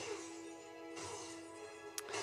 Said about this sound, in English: Kylo Ren smashing the crap out of his helmet.